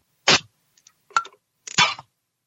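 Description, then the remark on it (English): A can of Grolsch beer is cracked open, with a sharp pressurised hiss, a couple of small metallic clicks, then a second longer fizzing burst. No one speaks. “It just pops open a can of Grolsch.”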